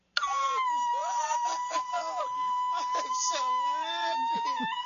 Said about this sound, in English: There it was. They were screaming. They were running around the house. And they're 13 and 17, but they weren't dignified about it at all.